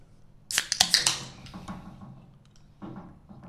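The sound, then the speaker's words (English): A colourful can of 3.5% alcohol beer is cracked open: a sharp metallic snap with a couple of quick clicks, then a bright fizzing hiss that fades over a few seconds, with no talking. “Let's just get straight into it. Ugh. Clean crack on camera.”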